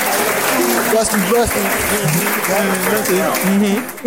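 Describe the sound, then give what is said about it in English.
A round of applause played as a sound effect: dense, steady clapping that fills the whole four seconds at a loud, even level, with voices talking over it, fading slightly at the very end. “Sorry, there's a round of applause. I found it.”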